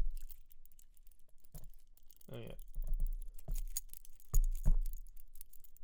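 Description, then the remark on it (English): Quiet, irregular clicks and light rattling as a small laser pointer cat toy is jangled in the hand, with a short spoken remark partway through. “No, what I'm jangling now, if you can't hear it, it's a laser pointer.”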